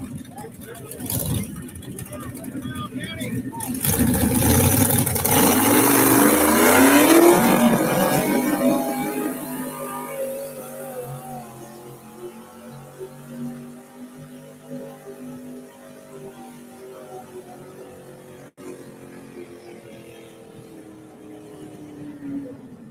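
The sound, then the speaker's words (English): A pulling tractor's engine roars loud during a tractor pull at the Cheese Fest in Blair, Wisconsin, surging to a harsh peak over several seconds, then drawing away into a lower, throbbing drone that slowly fades. “Blair, Wisconsin, for the Cheese Fest, and we are tractor pulling.”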